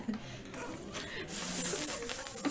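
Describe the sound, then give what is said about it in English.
A sharp, snake-like hiss swells up partway through and holds steady for about a second, loud over a faint, murky background. “Stop hissing, you freaking snake.”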